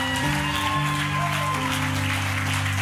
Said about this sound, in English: Can we give your pastors a round of applause?